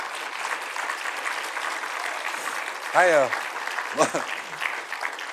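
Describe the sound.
An audience applauds a woman with steady, dense clapping throughout, broken twice by short voiced shouts or whoops from someone in the crowd.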